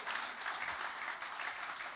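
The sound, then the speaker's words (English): A crowd applauds a boy after his Bible reading, with dense, steady clapping that holds an even, fairly loud level throughout, a continuous crackling wash of many hands with no voices standing out. “Let's give the boy a round of applause.”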